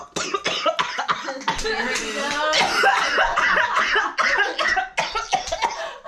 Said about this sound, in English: I didn't even cough. Mm. Yes, I did cough. Look, that's the weed.